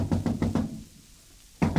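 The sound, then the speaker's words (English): Four heavy, rapid, loud knocks on a door by the king's watch, then a brief silence before another knock starts. No one speaks. “Francois, the king's watch. They're at the door.”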